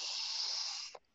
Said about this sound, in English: And I want you to just continue that cycle of big breaths, big belly breathing, calling in that life force energy, calling in fire, momentum.